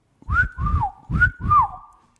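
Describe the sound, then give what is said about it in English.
A person whistles twice, each whistle a quick two-note phrase that swoops up and then dips, clear, with a brief pause between them and no talking. “Whistle, whistle. Okay, two whistles.”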